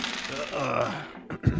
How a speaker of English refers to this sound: And that was a lot of dice for a short sword. Sorry, yeah, I had to unleash them.